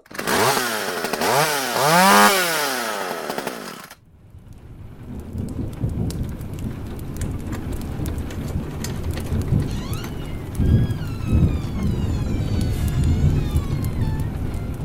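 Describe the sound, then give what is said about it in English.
A Halloween thunderstorm sound effect: a sharp, sweeping electric crackle of lightning for a few seconds, then steady heavy rain with deep, rolling thunder rumbling loudly throughout. “Lightning crackle, lightning crackle, thunder.”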